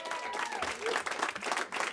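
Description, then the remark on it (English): An audience at a live music show applauds with dense, continuous clapping that stays steady and fairly loud throughout, with faint voices and a brief whistle-like tone mixed into the crowd noise. “You're clapping now, but one of them's 42 minutes long, so.”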